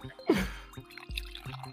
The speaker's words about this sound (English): Oh, and I talked over the coffee pour too.